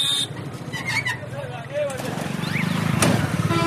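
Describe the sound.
Busy street traffic at a street corner in Bangladesh creeps past with a steady engine rumble, short horn toots and ringing bicycle bells, plus a sharp clack near the end and faint voices in the background.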